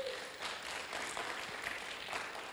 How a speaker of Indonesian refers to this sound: Jika Anda percaya itu, beri tepuk tangan pada Dia.